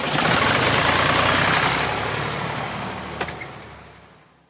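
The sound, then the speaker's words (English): The engine of a small red Volkswagen car idles steadily, a low continuous rumble with broad hiss, then a single faint click before the sound gradually fades away. “And you still go out every day in the car?”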